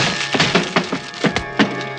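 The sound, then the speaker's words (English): A heavy, locked wooden panel door is forced open with a shoulder until the hinges give way, with a series of loud, irregular cracking thuds and splintering wood crunching throughout, and no voices. “The door was locked, so I gave it the benefit of one of my shoulders.”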